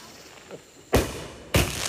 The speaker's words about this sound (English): This is fireworks in Texas. With the Richards. Yeah, but it's backyard fireworks.